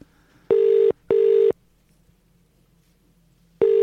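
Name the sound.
phone call ringing tone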